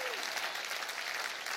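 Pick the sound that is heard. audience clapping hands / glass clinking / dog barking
audience clapping hands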